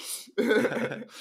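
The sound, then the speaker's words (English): A single short, rough cough bursts out, harsh and throaty, lasting under a second, with a faint breathy hiss before and after. “Don't you cough on my dad's t-shirt.”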